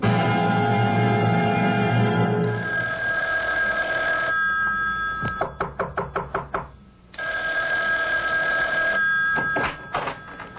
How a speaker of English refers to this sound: Isn't that your phone? I hear ringing. Yes. Why don't you answer it?